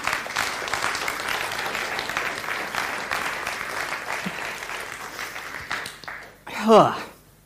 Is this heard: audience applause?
yes